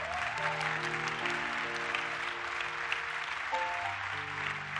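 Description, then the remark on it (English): An audience at a sermon claps steadily and densely for several seconds, a continuous even patter, while sustained keyboard chords hold and shift underneath. No one speaks. “I'm sure as we are clapping, as some people are still saying, me, I'm not going to clap because I don't want them to come after you.”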